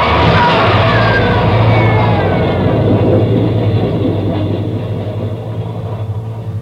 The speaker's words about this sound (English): there's a train coming through.